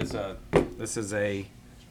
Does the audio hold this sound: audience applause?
no